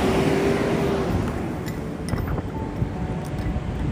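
A garbage truck rumbles past on the street, its heavy low engine drone loud and steady throughout, with a brief whine early on and a few faint clanks over outdoor wind noise.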